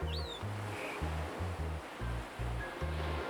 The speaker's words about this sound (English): As you enjoy the flavors of the Caribbean, nature plays around you. The gentle lapping of the waves